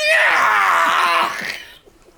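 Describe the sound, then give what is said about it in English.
A single anguished scream from a TV drama scene, loud, holds strained and raw for about a second and a half before breaking off and fading into near silence. “Out of all the yells, you keep that one.”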